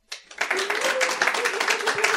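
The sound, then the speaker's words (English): Scattered applause from one side of a room's audience, answering a question about who programs in multiple languages in the same project: a loose patter of claps lasting about two seconds, moderately loud, with a faint murmur of voices underneath. “Well, one side of the room applauded.”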